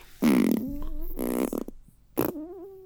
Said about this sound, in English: stop farting.